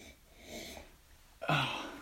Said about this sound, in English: Okay. You got a good sniff in